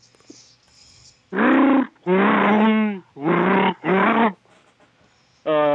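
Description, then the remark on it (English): A series of five loud Wookiee roaring growls from Grombaka the Wookiee, each a drawn-out throaty bellow with wavering pitch, separated by brief pauses, with no talking around them. “And for those of you that don't speak Shriwook, Grombaka the Wookiee would like to let you know that he never listens to the Order 66 podcast.”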